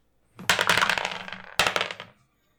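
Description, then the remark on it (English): Dice clatter across a hard tabletop in two rolls, each a burst of quick rattling clicks that tumbles and fades out, fairly loud with no voices. “Let's grab the dice and roll.”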